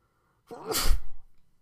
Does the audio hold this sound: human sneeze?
yes